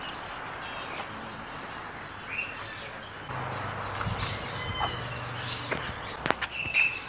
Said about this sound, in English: Okay, here we are. Yeah, just wandering around one of Perth's local pet shops. Have a nice range of finches by the looks of things.